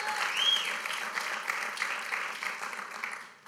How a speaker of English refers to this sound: Somebody please give God a round of applause if you believe that. Amen.